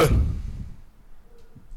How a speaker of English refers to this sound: We're going to leave that in. We're going to leave that in the edit. Oh, we leave all the burps in.